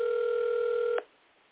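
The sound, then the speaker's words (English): A phone line tone hums steadily through a narrow telephone band for about a second during an unanswered call, then cuts off abruptly with a click, leaving quiet line hiss. No one speaks. “And these are not prank phone calls, I want you to know.”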